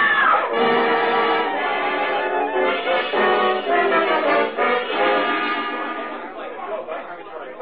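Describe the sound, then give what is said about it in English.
In a hotel lobby after the lights go out, a sharp, high scream rings out near the start, then a crowd of overlapping agitated voices keeps up a loud, continuous commotion, fading slightly toward the end. “What happened? Somebody screamed.”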